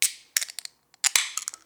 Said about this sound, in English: So what we're going to do here is we're going to grab our glass, grab our can, and we, a little condensation on here because she's warm, we're going to open her up.